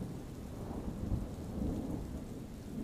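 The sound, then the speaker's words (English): A steady thunderstorm with continuous rain and a deep, rolling rumble of thunder swelling low beneath it, broad and enveloping with no voices present. “Enjoy these allegedly true scary bedtime stories with the serene sounds of a thunderstorm.”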